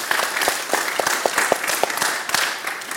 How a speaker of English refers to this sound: Give them a round of applause, would you please?